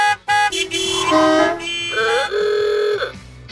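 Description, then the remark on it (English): Several car horns honk over one another in a loud, continuous jam. Long blasts overlap at different pitches, with steady traffic noise underneath and no talking. “Imagine if they all turned red at the same time. There'd be a ton of traffic.”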